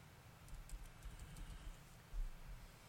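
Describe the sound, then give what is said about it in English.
Faint, irregular clicks of typing on a computer keyboard, soft, over a low rumbling background hum with no one speaking. “Sorry. Just typing.”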